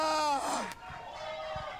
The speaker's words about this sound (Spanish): ¡Aleluya! ¡Fue un grito de victoria!